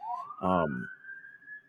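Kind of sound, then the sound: vehicle, police siren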